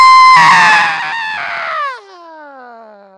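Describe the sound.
A voice mimics a child screaming in a shopping cart at a Walmart store: one loud, shrill, sustained shriek that wavers, then slides downward in pitch and trails off into a quieter, fading wail.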